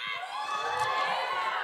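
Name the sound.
crowd cheering sound effect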